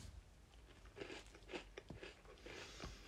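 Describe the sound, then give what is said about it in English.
Crunching as someone bites into an Oreo cookie, followed by a few crisp, irregular chewing crunches over a few seconds. Fairly quiet, with no talking. “Right, I'm going to crunch into this.”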